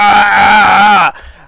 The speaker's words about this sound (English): Okay, so do you hear that screaming?